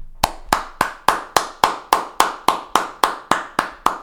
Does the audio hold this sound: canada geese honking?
no